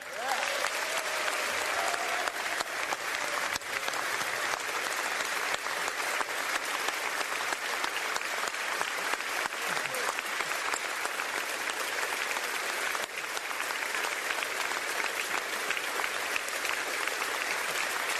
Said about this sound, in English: This is applause for the Capitol Police. It was a standing ovation.